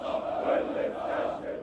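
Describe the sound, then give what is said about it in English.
A large group of police recruits chants in unison at a police compound on the outskirts of Cairo, loud and sustained, with a steady midrange roar of many people shouting together and no single voice standing out. “"Let me hear your loud shouts," they sing. "I have never feared death."”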